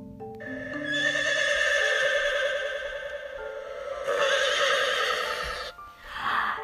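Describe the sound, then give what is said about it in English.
A long, loud horse whinny standing for a unicorn as doors open, with a quavering, high-pitched tremolo that rises and holds, then a second whinny burst, ending with a short breathy snort. No one speaks. “And it was the most beautiful unicorn that they had ever seen. And as the doors opened, this is what they heard.”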